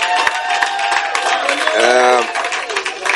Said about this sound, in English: And today, I saw an amazing miracle. The dress of our choir. My God. It's too powerful. Let's clap our hands for them.